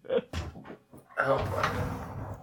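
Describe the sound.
Scratching and rattling at a locked door as a man struggles to force it open while someone on the other side leans on it to keep it locked, fairly loud, with brief voices at the start before a sustained scuffling noise.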